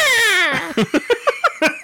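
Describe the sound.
A voice imitates the screaming eagle heard in a show's intro music, with a loud, high, strained shriek that slides downward, then breaks into about six quick, choppy yelps that sound almost like laughter.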